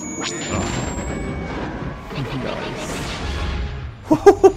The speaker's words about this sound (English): Big fan of vehicles flying through explosions. Oh yeah, it's great.